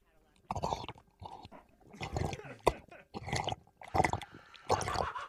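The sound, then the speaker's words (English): Someone drinks water, with a run of wet gulps and swallows coming in uneven bursts and a small click partway through. No one speaks. “I'd really like to drink some water. Okay, have a drink of water, then...”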